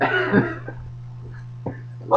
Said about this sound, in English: That is a tasty burp.